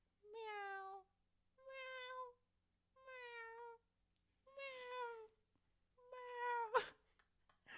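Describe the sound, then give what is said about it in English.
A voice imitates a cat's meow five times in a row, each drawn-out call evenly spaced and fairly loud, the last one ending with a sharp knock. “are you making a cat sound?”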